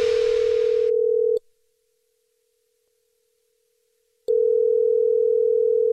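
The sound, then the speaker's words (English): A loud, steady telephone dial tone hums with a little hiss at first, cuts off into about three seconds of silence, then comes back just as strong, before a Jubal phone prank call. No one speaks. “It's another Jubal phone prank.”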